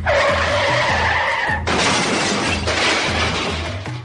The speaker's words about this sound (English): Wait a minute. You mean because the first sound is a car crash. Let's hear it again.